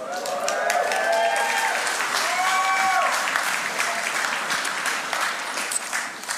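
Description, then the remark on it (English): A crowd claps steadily and loudly for several seconds, a dense, full round of applause, with a few voices whooping and cheering near the start before the clapping slowly thins. “She definitely deserves a round of applause for that.”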